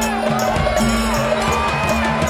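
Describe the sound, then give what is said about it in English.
A large crowd at a parade roars loudly and steadily as giant orange, purple, green, and yellow helium balloons are released into the sky, a dense wash of many voices cheering at once with no break, a faint sustained tone running underneath. “Then the crowd roared as giant orange, purple, green, and yellow helium balloons were unleashed into the sky and hovered over the parade route.”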